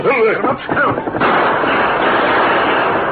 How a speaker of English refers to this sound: Look, Kemosabe, me see Indians. Them shoot guns. Ho. Five of them. They're shooting at someone in the draw below.